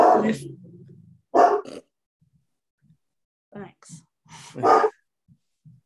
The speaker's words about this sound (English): The aggressive dog returns. Yeah, really. He just sounds mean.